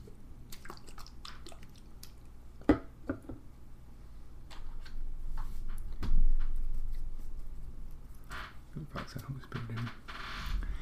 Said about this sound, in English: The priest now sprinkles a little holy water, and I do have a little holy water too. Oops, too much holy water. I'm going to drown it. And I put a little holy water on mine, my scapular. I'm putting a little holy water, not a visual.